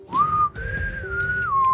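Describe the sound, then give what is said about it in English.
A person whistles a short, sustained tune, the pitch gliding up and holding before stepping down, with low rumble underneath and no talking. “You whistle us out, bro. No, you got to whistle.”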